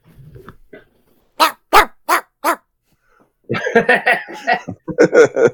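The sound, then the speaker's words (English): A miniature Labradoodle lets out four sharp, evenly spaced barks, then breaks into a longer stretch of rough, rumbling, loud growls and snarls. “Sound like a Boston Terrier. Actually, kind of. He's a Labradoodle.”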